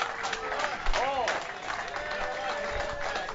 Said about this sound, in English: Now I'm going to give you a chance to do something you rarely had a chance to do. You're going to applaud for an umpire. Let's have a nice welcome for Tim Tschida.